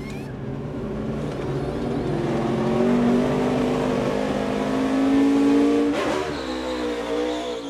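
A race car engine roars loudly and steadily, its pitch climbing as it revs, then sweeps past with a sharp shift in tone near the end. No one speaks.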